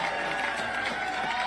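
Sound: rally crowd reacting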